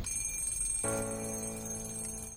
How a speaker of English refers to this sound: That's a loud alarm clock. That's a loud alarm. That's interesting. The alarm clock goes off and then you turn on your own music.